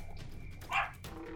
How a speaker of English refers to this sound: Apparently it's a dog in the battlefield. It's a dog in the battlefield.